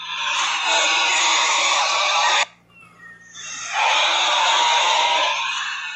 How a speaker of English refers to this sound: That's what that sounds like when they're screaming crazy like.